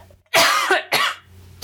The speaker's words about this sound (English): And I'm sorry, I'm going to cough and I'm not going to edit it out.